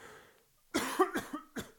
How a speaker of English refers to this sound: Excuse me, a tolerance break. You know, just coughing up all sorts of stuff.